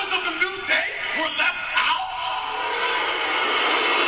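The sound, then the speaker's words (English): A WWE arena crowd voices its displeasure at the announcement of a 16-man tournament to determine a new WWE World Heavyweight Champion, a dense, sustained wash of booing and jeering with a few louder shouts at the start, then settling into a steady, unbroken roar. “And the crowd didn't like it either.”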